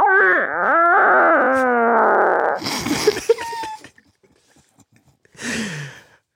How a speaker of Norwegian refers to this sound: Skal vi gå videre da til innsender fis nummer to? Yeah! Ja. Ingen fødre du, jeg bare fis i gang. Ja. Ja, her kommer den.